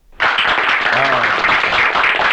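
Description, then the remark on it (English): A burst of crowd applause, played as a sound effect, starts abruptly and holds steady, dense clapping at full volume with a brief voice-like tone mixed in near the start. “Everybody clap.”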